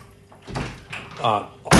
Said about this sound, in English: We're about to hear a door slam, folks. Just getting you ready.